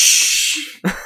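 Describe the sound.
A voice imitates a hose spraying with a finger over the nozzle: a loud, steady, high-pitched hiss lasting nearly a second, breaking off into a short burst of voice.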